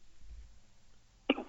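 A single short, sharp hiccup from a man bursts out near the end after a stretch of quiet low rumble, abrupt.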